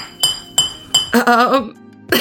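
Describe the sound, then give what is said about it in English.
A cowbell is struck four times, each a sharp, bright metallic clank with a ringing tail, at a fairly steady pace, with a brief loud shouted voice between the third and fourth hits. “Can you just say, scream my name like you mean it while hitting the cowbell?”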